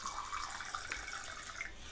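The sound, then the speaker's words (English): Wine pours steadily into a glass for a couple of seconds, a soft continuous splashing trickle with faint gurgling, fairly quiet, with no talking. “Hold on, I'm gonna pour myself a glass of wine.”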